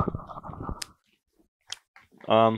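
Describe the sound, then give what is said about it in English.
Close, crunchy chewing right at the microphone for about a second, then a pause with a few small mouth clicks before a voice briefly starts up. “Me chewing into the mic.”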